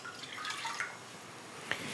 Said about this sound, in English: I am going to add in the 1/4 cup of water, getting that from my sink into the pot.